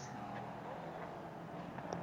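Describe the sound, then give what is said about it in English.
A steady, droning engine roar from three race cars battling down the front straight, Stephen McAleer trying to get around Paul LaHaye with Jonathan George for 47 Motorsports in front: a continuous mechanical hum with a faint whine on top, fairly quiet, with no voices. “Three cars battling down the front straight.”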